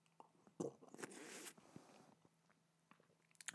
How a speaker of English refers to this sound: Oh, goddamn. Took a big ass gulp, bigger than I anticipated. And that fucking burned the hatch. Burned right on down the hatch.